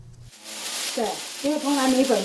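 Flour, yeast, a sourdough starter and soy milk churn in a blender to make bread dough, a steady hiss with a low motor hum that swells partway through and keeps running to the end.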